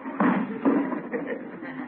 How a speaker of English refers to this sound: Noisy neighbor. Slamming windows at this hour of the night. No consideration for other people.